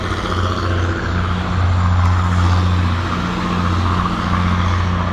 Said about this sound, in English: I had to stop talking for a minute. It was a big old truck riding past.